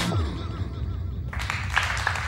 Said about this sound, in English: The smattering of applause gets me every time. Yeah, love that. It's not a full crowd. It's like 45 people.